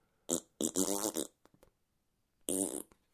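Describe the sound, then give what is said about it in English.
A loud fart in three bursts: a short blast, then a longer, pitched, wavering toot, and after a pause one more brassy, tuneful burst. “Another of …'s musical farts that we don't edit out.”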